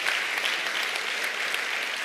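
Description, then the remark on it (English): An audience at a morning gathering gives the Lord a hand clap, many hands clapping in a dense, even wash of sound that holds at a constant loudness throughout with no voices over it. “Come on, give the Lord a hand clap this morning.”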